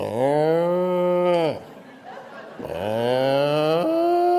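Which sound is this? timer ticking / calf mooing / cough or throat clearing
calf mooing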